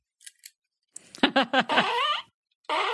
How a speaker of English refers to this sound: We got it now. I got to give it 4 farts.